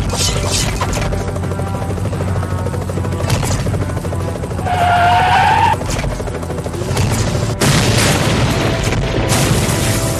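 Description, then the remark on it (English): In a video game (PS2/Wii version), an attack helicopter's steady rotor roar fills the scene while a rising engine whine swells through the middle, then a sudden heavy crash booms out near the end as a hijacked police car teleported into midair rams it, and the loud rumble continues. “Like, you could hijack a police car and then use it, just teleport it into midair and ram it into an attack helicopter.”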